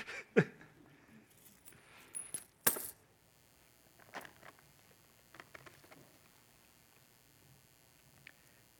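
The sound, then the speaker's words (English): Coins drop and clink in a church, a few sharp, loud strikes early on followed by lighter, scattered jingles and taps that trail off over several seconds, with no voices. “I won't put any of these coins in the offering.”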